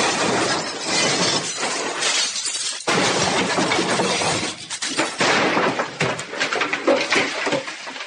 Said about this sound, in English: And due to the wolf Chi tries to keep leashed, the brakes appear to have been severed. The starship Poofwanian crash-landed in one of the high towers of Hogwarts.